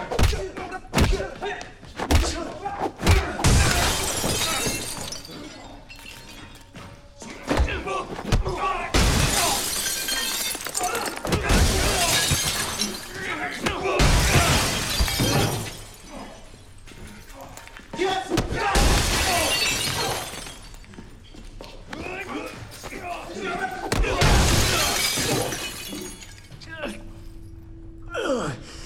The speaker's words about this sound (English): when Keanu is kicked into the large glass display cases and they explode